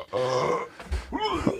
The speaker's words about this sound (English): Sorry, okay. I was just burping over there, dude.